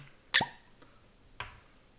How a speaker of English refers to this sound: So here you go. And to prove this, you know, it's brand new. You can hear. You know, we're going to uncork it.